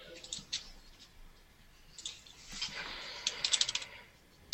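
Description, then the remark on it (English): Rapid typing into a chat on a computer keyboard, a quick irregular run of light plastic key clicks, with a short pause before another flurry of keystrokes near the end; quiet, with no voices. “Who's typing something into chat. Was he typing or rolling D6s?”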